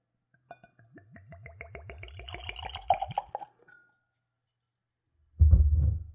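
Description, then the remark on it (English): Whiskey glugs from a freshly opened bottle with a natural cork stopper into a clean Glencairn glass in quick, rhythmic gulps that rise in pitch as the glass fills, followed by a short pause and a dull thump. “It's got a natural cork stopper, and let's go for a pour.”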